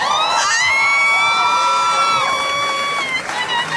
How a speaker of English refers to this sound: Let's have a listen. Here we go. This is it. Round of applause for